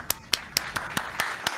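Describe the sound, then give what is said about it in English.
An applause sound effect played from an applause button: seven sharp, evenly spaced hand claps in a quick steady rhythm, moderately loud over a faint hiss, with no talking. “Hold on, where's my applause button?”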